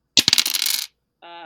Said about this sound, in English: So for the territories, I need you to roll 1 6-sided dice to be your 10s and 1 6-sided dice to be your 1 and tell me which that is. All right. Purple one will be the 1s. White will be the 10. Let's go.